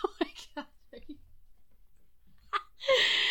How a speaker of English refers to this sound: Oh my God. That looked like maybe a burp that you were trying to control. Is that what that was? I don't know what that was.